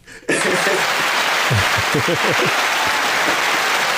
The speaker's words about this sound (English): Hey, AG, hit them hand claps.